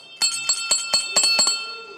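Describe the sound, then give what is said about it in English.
A bell is rung rapidly, about eight bright clanging strikes in quick succession, its metallic tones ringing on and overlapping before fading out. Fairly loud, with no voices. “I wanted to ring the bell.”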